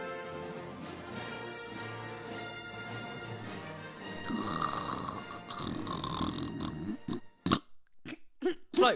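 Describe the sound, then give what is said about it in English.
Loud, rasping snoring drones on steadily for several seconds, growing rougher, then breaks into a few short, sharp snorts near the end. No one speaks. “wake up. It's finished.”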